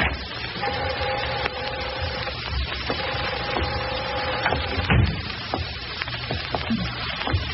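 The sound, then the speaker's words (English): A steel rod grinds and scrapes against the wood of a locked door in two long, strained creaking pushes, with scattered knocks, then a sharp crack as the door gives way, over steady background hiss. “A steel rod ought to open it.”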